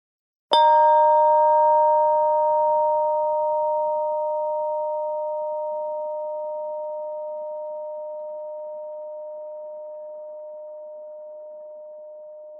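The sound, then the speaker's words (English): A single chime is struck once, giving a bright metallic attack and then a long, steady, pure ringing tone that slowly fades over about twelve seconds, with no voices. “You may want to close your eyes so that you can really hear the chime sound until it's totally gone.”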